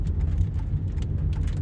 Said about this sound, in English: Maybe those are, oh, maybe that's hail falling. Holy God. Dude, I think that's hail that's literally falling down right now. I just got hit in the face with something.